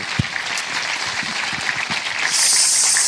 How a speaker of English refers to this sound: Lolly Adefope, you've been a pleasure. Before we turn to the audience for their questions, may I please have a round of applause for Lolly Adefope.